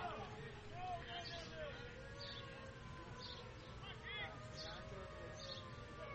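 An air raid siren wails steadily with rising and falling tones, set off in the Dayton dugout at a baseball game, over a busy crowd murmur that fills the whole stretch.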